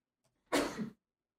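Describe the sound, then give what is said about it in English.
A single sneeze, fairly loud: a faint breath in, then one sharp, explosive burst that trails off within half a second, followed by silence. “Get your sneezing ass out of here.”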